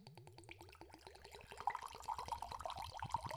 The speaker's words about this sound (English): Yeah, I mean, they're not going to pop, so at least give them like a good, nice pour sound. That sounded pretty cool, right? Yeah. That's worth it. Because he's pouring it like the slowest way possible, like up and down.